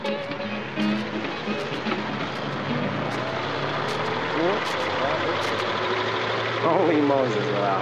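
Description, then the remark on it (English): An old jalopy's engine runs steadily, a rough, rattling drone that holds even throughout and swells briefly near the end, with muffled voices mixed in. “Boy, but I'd hate to hit that desert in a jalopy like that.”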